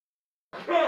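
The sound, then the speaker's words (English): After a stretch of silence, a single sneeze bursts out: a short, breathy, fairly loud explosion of air with a rough voiced edge, ending abruptly. “Bless you”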